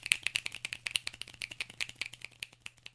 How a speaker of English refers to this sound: If you're at a poetry reading or a jazz concert, you may snap.